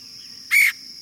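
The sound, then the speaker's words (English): A single short, harsh call of a red-headed woodpecker, a raspy, slightly tonal burst rising clearly above a quiet background hiss, with no voices present. “The red-headed woodpecker is a striking bird.”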